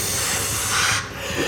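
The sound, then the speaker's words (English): A voice imitates steam billowing off a mask: a steady, breathy hiss held fairly loud for about a second and a half, dipping briefly near the end, with no words spoken. “But steam comes billowing off of his mask.”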